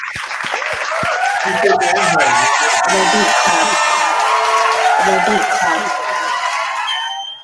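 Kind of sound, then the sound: crowd, group clapping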